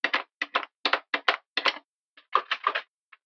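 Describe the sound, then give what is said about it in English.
Someone raps on a locked door repeatedly: quick paired knocks, a brief pause, then another rapid flurry of knocks, fairly loud with no voices. “the door is locked again.”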